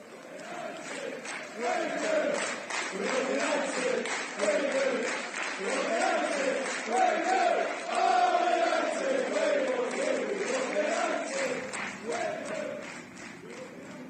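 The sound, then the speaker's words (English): A rowdy group of drunk United football fans outside the away end at Stamford Bridge, London, shouts and chants about the banks of the River Irwell in loud, rhythmic bursts, their raised voices rising and falling in repeated phrases for the whole stretch before easing slightly at the end. “sold a few, but mainly just getting shouted at about the banks of the River Irwell by some particularly drunk United fans who are having an absolutely fantastic night.”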